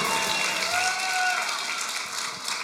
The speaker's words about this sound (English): Why don't we give God one more round of applause? ¿Por qué no le damos a Dios otro fuerte aplauso?